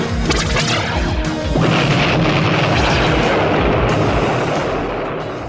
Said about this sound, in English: One of the blasts dislodges a boulder, which smashes Thunderhawk.